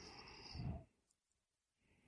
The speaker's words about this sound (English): Well, that yawn is my cue.